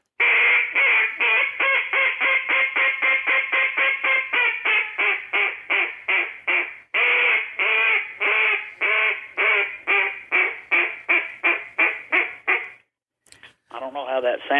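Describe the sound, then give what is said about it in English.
A duck call blown in a long mallard hail call: a loud, steady string of raspy, nasal quacks, over two dozen in a row with a brief break midway, ending in a few short notes. “You can do the high ball, which is a...”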